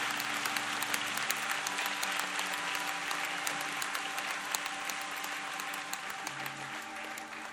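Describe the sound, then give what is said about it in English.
An audience gives praise claps steadily for several seconds for those who raised their hands, a dense wash of many hands clapping at once with no pauses, at an even, moderately loud level. “Everybody else ought to be giving them some praise claps right now.”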